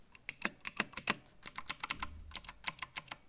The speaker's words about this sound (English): Yeah, so it's a true mechanical keyboard, which is great. It feels great in the hands to type on, and it is a little bit slippery, but I got used to it over a few hours doing.